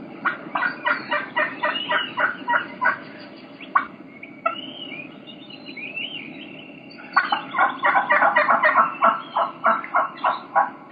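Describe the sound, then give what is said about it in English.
Two hens give the same call, each a quick run of rhythmic, repeated yelps: one series at the start, softer scattered notes in the middle, then a second fuller series. No talking. “You can hear two hens doing the exact same vocalization, but you're gonna be able to tell that they're two different hens.”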